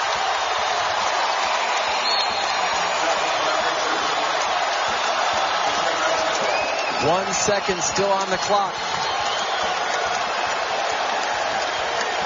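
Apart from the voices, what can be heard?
basketball arena crowd cheering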